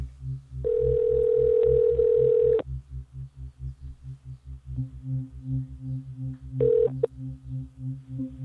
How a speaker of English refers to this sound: Let's go ahead and make another phone call.